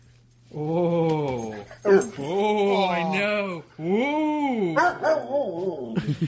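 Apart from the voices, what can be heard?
dog barking and whimpering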